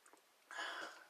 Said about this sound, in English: I just gotta take a sip of water here.